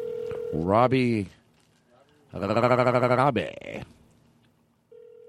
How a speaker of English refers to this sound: Answer the phone. What are you doing?